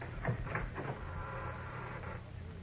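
A heavy door creaks and grinds open as people get it open, with a low, rumbling scrape that drags on steadily for a couple of seconds, with no voices.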